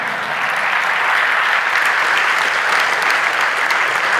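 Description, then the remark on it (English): A church audience claps their hands for the Lord steadily for about four seconds, a dense, even wash of many hands with no break or swell, loud and sustained throughout with no voices on top. “I thought you would clap your hands for the Lord.”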